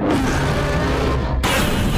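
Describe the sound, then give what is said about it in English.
A loud, heavy cinematic punch sound effect of a huge gorilla punching a lizard, with deep booming rumble that sustains, followed by a second sharp, bright smack partway through. No voices. “That huge gorilla just punched the hell out of that lizard!”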